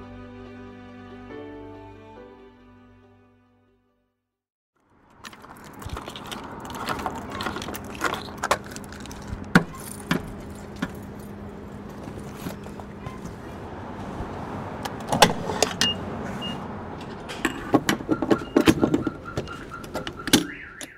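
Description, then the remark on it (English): A steady mechanical whir with clicking and clattering as gas flows from a pump nozzle, topping off a car's gas tank, after a brief tonal jingle and a moment of silence. “as you can hear, I'm topping off the gas tank in my car.”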